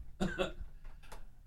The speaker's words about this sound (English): What was that? What? I just had a little cough there.